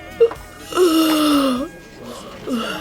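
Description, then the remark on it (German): A boy in a school class near the end of an English lesson gives a loud, drawn-out yawn, a voiced moan that holds for nearly a second while slowly sliding down in pitch, with brief softer vocal sounds before and after. “Du hast sie eben in beeindruckender Weise gezeigt, beim Gähnen.”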